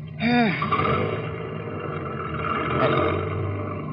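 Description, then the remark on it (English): A car reverses about 20 yards along a road: the engine briefly revs with a bending, whining tone, then settles into a steady low rumble that keeps going to the end. “Back it up about 20 yards.”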